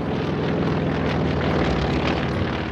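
A propeller airplane drones steadily and loudly, its engine a constant rumbling hum with a buzzing harmonic tone throughout, no voices present.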